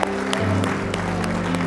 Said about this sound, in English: Come on and give the Lord a hand clap of praise and glory today.